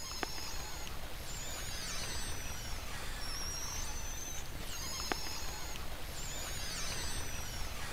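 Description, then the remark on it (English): A recording of killer whale whistles: several high, gliding tones that rise, fall and wobble over a constant hissing background, with a couple of sharp clicks. No one speaks. “And I also brought some recordings from killer whales, some mm-hmm. whistles.”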